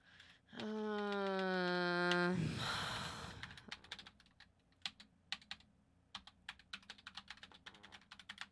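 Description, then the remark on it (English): A long voiced groan trails into a breathy sigh, then crisp typing on a sensitive gaming computer keyboard follows in quick, irregular bursts of clicks for several seconds. “Look at your typing.”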